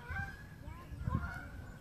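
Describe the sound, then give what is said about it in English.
Geese honk several times as the flock flies away, their calls rising and falling over a low outdoor rumble, faint and somewhat scattered, in Columbia on a mild day of about 71 degrees. “The geese are flying away now.”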